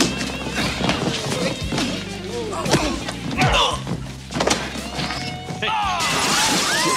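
A loud crash of shattering glass as a person is thrown through glass, amid heavy thuds and scuffling, with bright debris clattering afterward; voices can be heard during the commotion.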